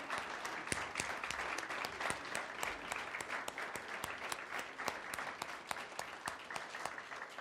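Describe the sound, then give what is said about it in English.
A room full of people claps steadily for the Awana leaders who work with the students. Dense overlapping hand claps with sharp individual pops, sustained and fairly loud throughout with no talking. “I'd like to give them a hand of applause just for working with our students.”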